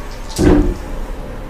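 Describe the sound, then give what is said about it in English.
Dice clatter briefly across a tabletop, a short rattling burst of about half a second that settles quickly into quiet room tone, with no one speaking. “That was almost really, really good, but then some dice move.”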